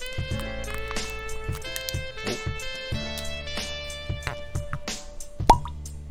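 A single sharp cork pop from a Belle Meade bourbon bottle being opened near the end, distinct, rising over a steady bed of background music with no one speaking.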